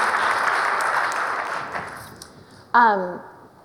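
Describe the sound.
Sustained audience applause, a dense wash of clapping that fades over a couple of seconds, then a single voice starts speaking over the tail end.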